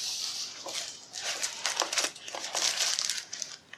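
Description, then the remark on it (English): Plastic film covering being peeled off a new 96-key computer keyboard during unboxing, with steady crinkling and rustling and brief crackly bursts throughout. No voices. “So we're going to take the covering off this.”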